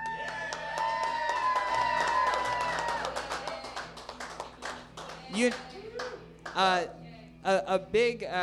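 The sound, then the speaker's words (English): Several seconds of dense, steady clapping with cheering over a tonal background at the Thriftathon 2019 event, which fades out about halfway through as a single voice begins talking. “The podcast host is a loser when they clap at their own shit, baby.”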